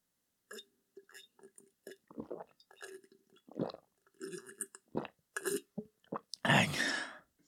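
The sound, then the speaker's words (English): A person drinking water in a run of quick, wet gulps and throaty swallowing noises, ending with a loud, breathy exhale. “It's very upsetting how you drink that.”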